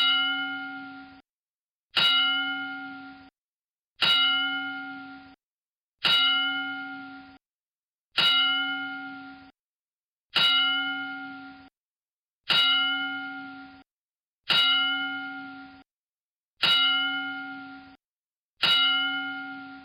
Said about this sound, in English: There's never been anybody more deserving so of a 10-bell salute, so we'll offer a 10-bell salute to the late, great Harley Race, and we'll be back.